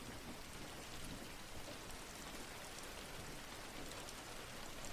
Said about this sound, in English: Seeing the rain fall.